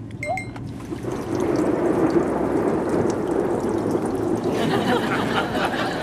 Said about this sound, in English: A white noise app actually sounds quite peaceful. Fire it up.